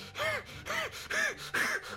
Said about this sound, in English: But you can breathe. Okay, well, I'm breathing hard. Heavy breathing.